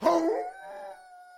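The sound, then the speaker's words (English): A single drawn-out howl at the full moon outside, by Lon Chaney Jr., rises from a rough onset into a steady, clear, sustained tone that holds and slowly fades, fairly loud, with no voices. “howled at the full moon outside.”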